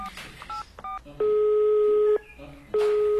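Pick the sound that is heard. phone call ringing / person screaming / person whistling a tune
phone call ringing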